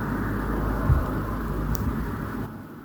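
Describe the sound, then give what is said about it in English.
Ocean waves wash onto a beach in front of a beachfront house in a steady, deep roar with a hissing top, a slight surge near the start, and no voices over it. “And I don't know if you can hear, but that's the waves.”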